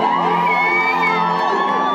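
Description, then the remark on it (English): A large crowd of women marching at the front line of a march cheers loudly, with many high voices whooping and yelling over one another in a dense, steady roar that never lets up. “Massive crowd of women marching behind me. This is the front line, and they're pretty amped.”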